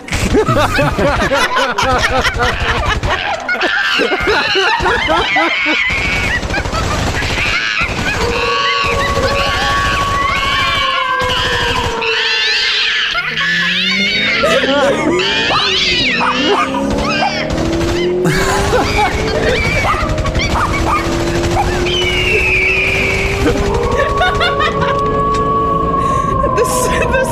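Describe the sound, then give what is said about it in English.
A person imitates monkey calls with loud, continuous hoots, shrieks and sliding whoops that rise and fall in pitch, layered over a busy, cluttered background with no clear words. “That's me turning into a monkey.”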